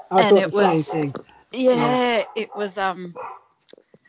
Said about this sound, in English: It's just my dog barking. That's all right.